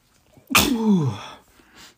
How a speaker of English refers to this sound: Oh, man, I have sneezed more in the last few days than I've ever done in my entire life. I don't know what it is in this apartment. I don't know if it's this new dog that lives above me, but I've been sneezing like crazy.